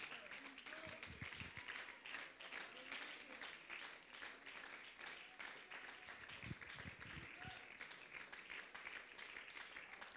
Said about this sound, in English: Let's stand up, if you will, and clap our hands to the Lord.